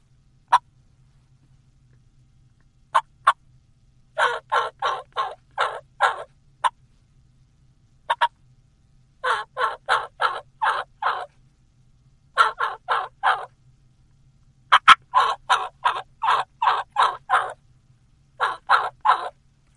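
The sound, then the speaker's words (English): Slow, deep gobbler turkey yelps, slower in cadence and deeper in tone than hen yelps, in runs of four to seven raspy notes separated by short pauses, with a few deeper single clucks in between. Clear, with no talking. “If you add some gobbler yelps, and gobbler yelps are like hen yelps, just slower in cadence, deeper in tone, like this, and deeper clucks.”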